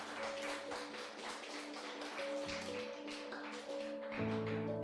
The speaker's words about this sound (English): Let's give the Lord the loudest clap offering that we can give them today.